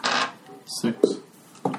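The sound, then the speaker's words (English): Hit dice rolled during a short rest clatter across a hard tabletop in a few quick rattling bursts, with short pauses between the tumbles and a final skittering roll near the end. “You may roll your hit dice if you'd like.”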